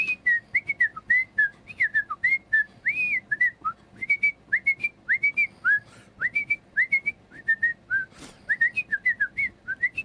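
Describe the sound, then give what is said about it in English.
A person whistles a bouncy original melody of many short, quick notes in a steady run, fairly loud, with no talking. “It was a lot of just whistling in a row.”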